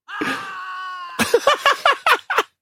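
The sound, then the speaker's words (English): A human voice lets out a long, drawn-out scream, then breaks into a quick run of six short, sharp shrieks, loud with nothing else behind them. “It's just human screams.”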